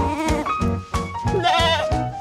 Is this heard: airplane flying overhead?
no